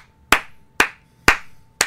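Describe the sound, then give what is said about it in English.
Four sharp, loud claps at a steady, slightly slow rhythm, each with a bright crack and a short ringing decay, with no talking. “It's a big, big clap for Deidre Sanat finally being off this roster.”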